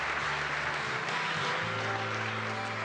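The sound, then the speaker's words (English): An audience claps as a hand of praise to the Lord, a dense, steady wash of applause that holds at an even loudness for about three seconds, with sustained low instrumental tones humming underneath. “Well, if you needed this today, give the Lord a hand of praise, would you?”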